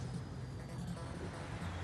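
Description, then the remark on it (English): A low, steady rumble of traffic, cars driving by outside the front of a house under a constant hiss of road noise, fairly quiet and unbroken by any voices. “With some cars driving by.”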